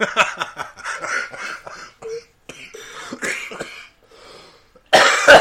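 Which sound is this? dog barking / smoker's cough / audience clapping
smoker's cough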